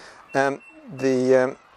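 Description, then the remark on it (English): A bird swooping to attack gives two loud, nasal calls overhead: a short one, then a longer drawn-out cry after a brief pause. “There's another bird coming along.”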